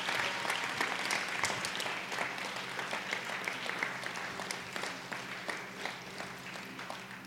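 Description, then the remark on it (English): An audience gives a sustained round of applause after a prayer on the night of November 4th, 2016, many hands clapping in a dense, steady wash of sharp claps that holds fairly level for several seconds. “Let's put our hands together. Let's make a big round of applause.”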